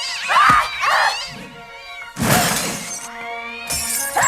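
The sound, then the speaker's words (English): A cat gives a short, close meow, followed by loud crashing and shattering bursts that sound like things breaking, with another sharp crash near the end. “Hey, kitty!”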